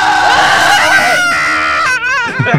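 A person screams loudly into someone's face, a sustained scream lasting a couple of seconds, harsh and strained with a wavering pitch that breaks up near the end.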